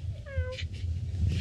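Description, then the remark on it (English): A single short, high-pitched meow, voiced by a person imitating a cat, rises and falls briefly, followed by a few soft breathy noises over a steady low rumble. “You can meow. Meow.”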